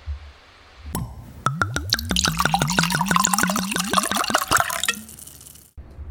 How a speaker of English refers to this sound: We have popped the cork. We have poured the wine into our glass, so we are going to get into our tasting.